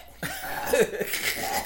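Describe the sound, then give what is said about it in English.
A single loud, drawn-out burp, rough and gravelly, rumbling on for well over a second after a sudden start, with no talking. “It's not static you're hearing. Fucking … burping.”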